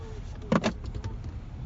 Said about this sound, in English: This is legit. We are going uphill with no gas. 15,000 engine is in neutral. It feels like we're going right up a steep hill.